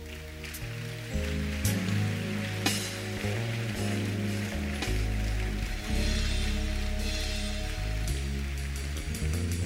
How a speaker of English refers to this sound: Keep clapping for them.